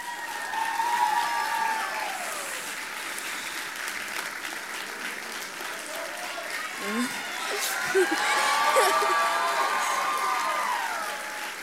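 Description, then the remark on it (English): A crowd applauds steadily for several seconds, with scattered cheers and whoops rising over the clapping, swelling again toward the end. “Can we give it up for them one more time?”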